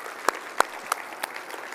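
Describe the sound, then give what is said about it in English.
Audience applause to encourage and thank the students who led them that day: a steady wash of clapping with a few sharper, louder claps standing out at an even, regular pace, with no talking over it. “Can we just clap and encourage them and thank them for leading us today?”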